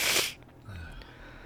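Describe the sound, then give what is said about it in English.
A short, sharp sniffle, a single breathy nasal burst, followed by quiet low background rumble. “That's sniffle.”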